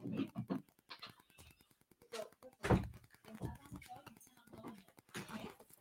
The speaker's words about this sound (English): And the wind keeps opening the door. That's why I'm putting stuff in front of the door. So stop opening the door, okay?